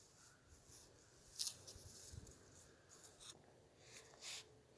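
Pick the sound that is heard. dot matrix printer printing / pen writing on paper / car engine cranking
pen writing on paper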